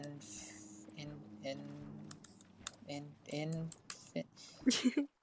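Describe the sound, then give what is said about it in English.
A voice imitates keyboard typing for a Google search with a quick run of hissy, clicking mouth sounds, moderately loud, ending in a few sharper taps. “Typing noises.”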